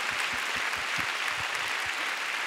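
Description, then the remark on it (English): A church audience claps to praise the Lord during an Easter sermon, a dense wash of many hands with a few sharper individual claps sounding through at an irregular rhythm, continuous and fairly loud throughout. “Oh, come on, give the Lord a big clap.”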